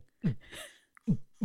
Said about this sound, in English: Should we have a jingle? Observations. Can I go like all like sort of cinematic and Marvel movie? Yeah. Okay. Oh, absolutely. Yeah. Okay. Is that a heartbeat?